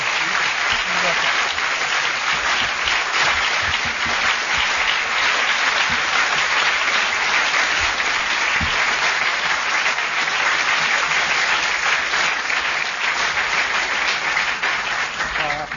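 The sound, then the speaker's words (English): A sustained round of applause from a large audience at an evening event. The clapping is dense and steady at a loud, even level throughout, with no voices rising above it. “I think that round of applause rather sums up the evening”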